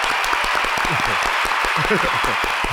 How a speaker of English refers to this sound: Listen, y'all already got a studio crowd. You don't need the extra. Y'all got a whole crowd back here. Just give it up. Get it working. Everybody clap.